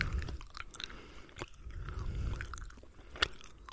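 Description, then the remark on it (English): Someone chews a fruit-punch-flavored candy corn with the mouth open: wet, squishy mastication with a few sharp clicking bites scattered through, moderately loud and with no voices. “I would eat candy corn if they tasted like that.”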